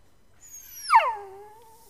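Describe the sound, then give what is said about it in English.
A dog whimpers once in a high, drawn-out whine that slides downward in pitch, fairly quiet, with no other sounds around it. The trembling dog is being held in someone's arms. “I noted he was trembling and whimpering, which was very much unlike him.”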